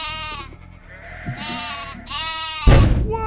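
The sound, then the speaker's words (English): Several sheep bleat in quick succession, their wavering cries overlapping, followed by a sudden low rumbling thud near the end. “Why in the hell are there sheep down here anyway?”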